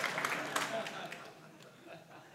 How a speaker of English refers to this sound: Oh yeah, I might break the record for most applause tonight. Let's go.